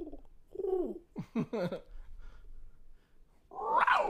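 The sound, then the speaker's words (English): A person imitates a cougar with their voice, making a string of short warbling calls and then a loud, rising, strained screech that breaks off, a bit like a yowling cat. “I'm trying to do a cougar, but I can't do it.”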